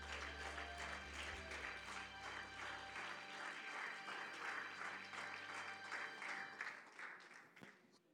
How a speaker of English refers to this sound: Could you give the Lord a hand clap as you're seated?